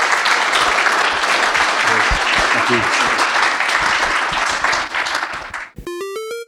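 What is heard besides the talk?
audience applause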